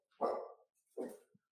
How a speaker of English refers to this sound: Someone came to the door and my dog started barking.